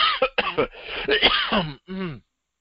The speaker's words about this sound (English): oh, 1 second, I have to cough.